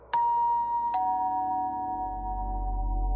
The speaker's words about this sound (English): She was about to attempt an answer when the doorbell rang.